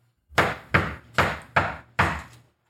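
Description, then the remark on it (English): Five firm knocks on a normal-sized wooden castle door, loud, in an uneven rhythm with a short pause before the last one. No one speaks. “We join the party as they knock on the castle door, which is a normal-sized door leading to a big castle.”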